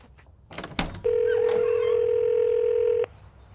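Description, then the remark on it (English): A phone being dialed: a few quick handling clicks, then a single steady electronic phone tone holds for about two seconds before cutting off, clear with no talking. “Okay, I gotta call her. I'm gonna go call her right now.”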